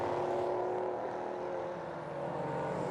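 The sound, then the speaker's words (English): LMP3 race car engines roar at full throttle with no lift, a steady, loud, continuous drone with a slight dip near the end, as the cars pass pit out during an IMSA race. No one speaks. “That was no lift whatsoever from two of our LMP3 runners.”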